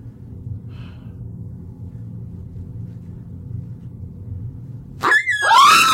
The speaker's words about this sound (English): it's a dog toy. Chill. Okay, well, it scared me. How did that noise even come out of you?